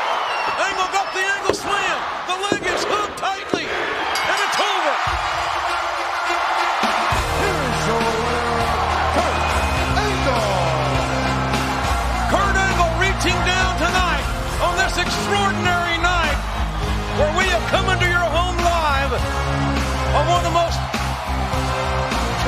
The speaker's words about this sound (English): So let's listen to the crowd as they celebrate the moment, the big USA chant as we go off the air. Let's take a listen.